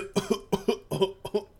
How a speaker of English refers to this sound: Grandma successfully coughs out the fish